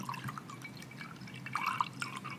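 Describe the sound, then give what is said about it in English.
Liquid pours steadily into a glass in a kitchen, recorded as ASMR, a continuous splashing trickle with small bright glugs and drips rising near the end. No voices are heard. “We got that full pour moment.”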